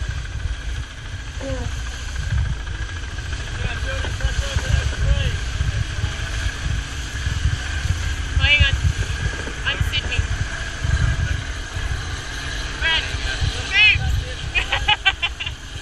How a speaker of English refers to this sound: And a helicopter.